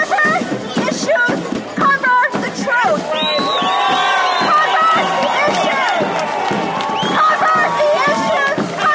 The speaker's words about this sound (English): The small but boisterous crowd was largely made up of young 20-somethings.